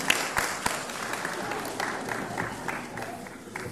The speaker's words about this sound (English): So let's give her a clap. Let's give Professor Wordsworth a clap.